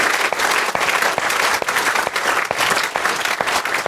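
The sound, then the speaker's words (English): An audience at the St James Theatre claps for the staff of the theatre and of Avalon, a dense, even wash of applause with sharp individual claps standing out, sustained at full volume throughout without voices. “Ladies and gentlemen, first before we end, a big round of applause for the staff here at the St James Theatre and at Avalon who've made it possible.”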